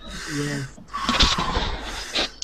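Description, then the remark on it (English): A short voiced hum, then loud breaths rush straight into a microphone, a couple of rough exhales lasting over a second with no clear words. “We could hear you breathing.”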